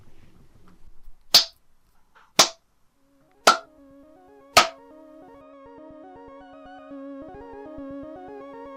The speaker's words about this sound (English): Shall I lead claps? Oh, yes. Do you remember how I do this? Please refresh me. Yeah. I clap 5 times, you clap with me on the 5th. No worries. So you get the rhythm.